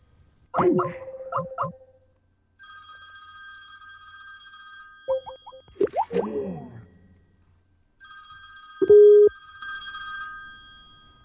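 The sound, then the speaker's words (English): A home landline telephone rings in two long, steady electronic bursts separated by a pause, clear, with brief voice-like sounds and knocks in between. “Somebody called my house line again.”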